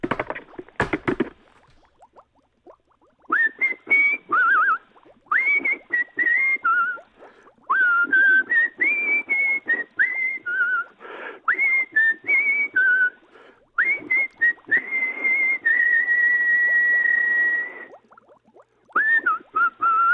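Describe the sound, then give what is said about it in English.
A person in the role of Bigfoot whistles a bouncy melody in short, rising and falling phrases, with a long held note near the end, fairly loud, after a couple of sharp knocks at the start. “Don't want to hear any more whistling Bigfoot, okay?”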